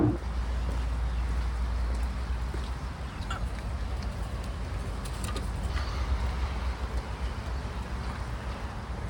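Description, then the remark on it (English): Steady rain falls outdoors, a dense continuous hiss with scattered sharper drips and a low rumble underneath, holding at an even, moderate level throughout with no voices. “Fucking booking shows in the rain on a run.”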